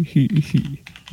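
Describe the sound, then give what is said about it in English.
A short burst of typing on a computer keyboard: a quick, uneven run of crisp key clicks lasting about a second. “Oh, he's typing.”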